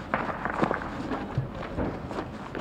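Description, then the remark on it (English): Gunfire: a handful of irregular muffled pops and cracks scattered over a low, rumbling background, with no voices. “Still gunfire.”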